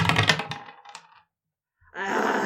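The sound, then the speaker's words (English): A quick burst of dice clattering and tumbling across a hard tabletop, fairly loud, then a brief silence before another dense rattling sound starts up. “So it's, I have a 5 on the dice, but freak is plus 2, that's the 7.”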